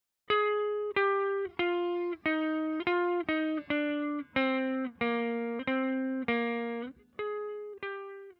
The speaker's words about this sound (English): For the solo section, I wanted it to sound pretty thick, so I actually played four guitars with the same part, but with different sounds. So first, here's the clean guitar.